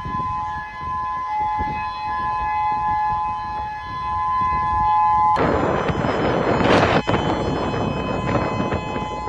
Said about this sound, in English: Suddenly sounded the alarm. Another fire in Kaanapali. Finally hearing the sirens going off this time.